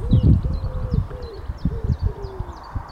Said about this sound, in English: Kill the pigeons. Couple of magpies over there and the crows. I like this time of day.